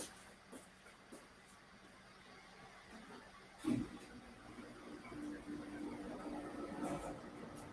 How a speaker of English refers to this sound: I've got to turn the air conditioner on in here. I'm burning up. I'm in the hotel room, so I have to excuse the sound. Let me turn it on.